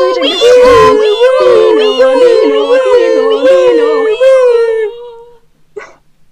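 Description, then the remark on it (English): Several voices, prompted to make a siren noise, wail together in imitation of a siren, their loud overlapping pitches sliding up and down for about five seconds before cutting off, followed by a brief faint vocal sound. “Everything flashes red and siren wail. Go on, prompted gang, make a siren noise.”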